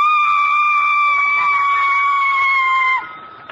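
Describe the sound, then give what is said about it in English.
A woman singer holds a single piercing, very high note, meant as a high C above a high A, steady and loud for about three seconds, shrill and almost shrieking, before breaking off abruptly. “I hit a high C above a high A.”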